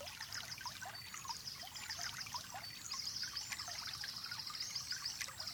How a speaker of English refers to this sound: And now some cool, refreshing, rainbow-coloured rain begins to fall on both you and your animal. You feel a fresh, rejuvenating tingle all over your body as each tiny, colourful drop lands on your skin.